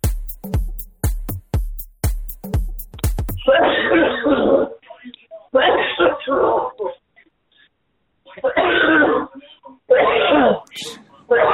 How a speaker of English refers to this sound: A lot of hacking on this one. You got the COVID cough. You got the Rona cough.